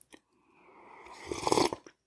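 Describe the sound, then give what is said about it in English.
A single slurping sip of very hot regular coffee with butterscotch toffee flavoring, a breathy airy draw that swells over about a second and ends with a soft gulp, with no talking. “Before we get going, however, I got to do something I haven't done in just a little while, and that is take a sip of my preferred beverage.”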